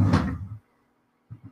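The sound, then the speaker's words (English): A nearly empty drawer slides with a rough, wooden scrape that lasts about half a second, then goes quiet before two soft, low knocks close it out, with no one talking. “Now this drawer has almost nothing in it. Now I'm going to video this for the vlog wrap up.”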